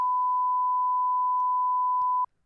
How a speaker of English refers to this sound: I'm gonna beep. All of that's just gonna sound like beep. I edit this.